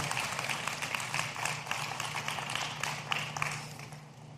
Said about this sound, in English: You can applaud. You can take a moment. Make a noise. Ha! Make some noise. Woo!